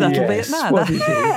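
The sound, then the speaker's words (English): A puppy whines and vocalizes, a continuous, fairly loud run of whiny, talk-like yowls that swoop up and down in pitch. “What is it? You're talking to me. You want your lunch too.”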